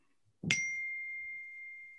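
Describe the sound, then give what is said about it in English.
A single bright electronic ding from a phone notification strikes sharply and then rings out as a steady, sustained tone that fades only slightly. “Can you hear my phone beeping, binging, dinging every time?”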